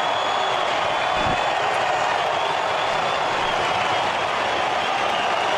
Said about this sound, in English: Well, we knew it would be high intensity, high octane, high pressure, and State of Origin 1 delivered a ripper. The siren goes.